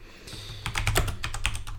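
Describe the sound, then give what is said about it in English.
Rapid clacking keystrokes from an old mechanical keyboard as someone types to look something up on a website, a quick irregular burst of sharp clicks after a brief quiet start, with no voices. “Yeah, I'm using an old mechanical keyboard.”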